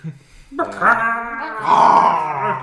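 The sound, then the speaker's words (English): A person voices a long, throaty roar in imitation of a T-Rex, a harmonic growl that swells and holds for about two seconds, loud, with no other talk. “A T-Rex, because it roars.”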